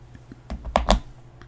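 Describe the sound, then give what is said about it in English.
Someone clicks and unclicks a pen a few times for effect, sharp plastic snaps in a quick irregular cluster with brief pauses between, no talking. “That was just me sort of clicking and unclicking a pen for effect.”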